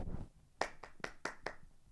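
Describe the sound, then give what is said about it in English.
Five sharp hand claps at a steady, slightly quick pace, made by people signalling that they are tired, each a crisp snap over a faint low rumble, with no one talking. “You guys, if you're tired, clap.”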